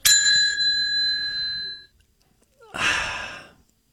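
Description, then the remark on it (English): A bright, shimmering chime rings out sharply and sustains for nearly two seconds before fading, followed after a short pause by a breathy, whooshing burst. “that's like a Saved by the Bell dream sequence”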